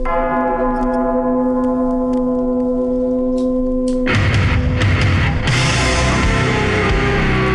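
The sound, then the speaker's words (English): Slowed-down metal music opens with sustained, out-of-tune bell-like tones ringing steadily, then about halfway through a loud, dense wall of distorted sound crashes in and keeps droning. “Yeah, they're like out of tune bells now.”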